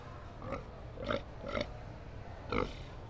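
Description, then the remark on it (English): A person mimics a pig with four short, nasal oinking grunts, spaced unevenly over a few seconds, moderately loud with no talking around them. “I want to make a sound effect every time I mansplain. Well, cool. Like do a fart. Like a pig.”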